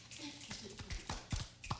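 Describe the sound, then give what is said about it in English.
A quiet golf clap: a handful of soft, light hand claps at an uneven, unhurried pace, with faint background murmur underneath. “Golf clap. That one was a little sad.”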